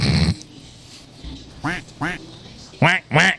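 A duck quacks four times, loud, in two quick pairs separated by a short pause, with a brief burst of noise before the first quack.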